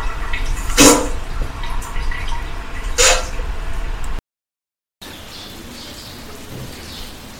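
Steady rain hisses outdoors on a mild day, with two sharper, louder drips or splashes standing out early on; the sound briefly cuts out before the soft, even patter resumes. No one speaks.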